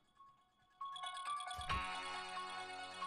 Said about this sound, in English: And so that's Brianna's ringtone, because she's weird.